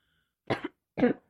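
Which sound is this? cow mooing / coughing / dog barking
coughing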